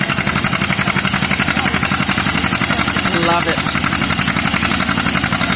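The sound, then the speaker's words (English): An old John Deere Model A tractor engine runs steadily, its loud, even chugging pulse continuing throughout, with a voice speaking briefly over it, as it is readied for tractor pulls. “You're getting ready for the tractor pulls, I see.”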